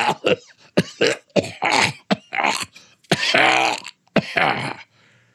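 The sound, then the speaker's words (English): A voice acts out a man's prolonged fit of coughing: a rapid series of harsh, throaty bursts with gasping, groaning breaths between them, fairly loud, with no words spoken. “Oh, how long have you had that cough?”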